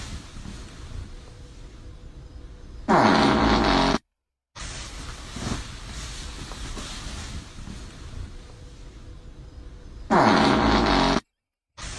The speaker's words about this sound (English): So, I hate the fact that I know that that fart was a sound clip from another video.